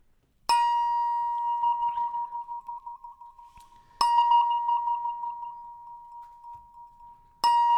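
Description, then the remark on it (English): A small bell at a game table is struck three times to open round one of a Monopoly game, a few seconds apart, each strike giving a bright, clear ringing tone that hums and slowly fades before the next. No one speaks. “I think they only ring the bell one time, buddy.”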